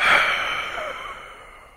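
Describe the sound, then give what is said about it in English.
A long, breathy exhale empties all of the air from the lungs as part of a breathing exercise, pushing out steadily for nearly two seconds, strongest at the start and slowly tapering off, alone with no talking. “It's caused by that breathing pattern, and then exhaling all of one's air, no speaking in between like I'm doing.”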